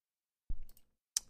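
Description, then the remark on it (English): A couple of separate clacks, like keys struck on a computer keyboard while looking something up on Urban Dictionary: a duller thump with a short tail, then a sharp, crisp click a moment later, with no voices. “The telltale clacking of the keyboard means we're headed over.”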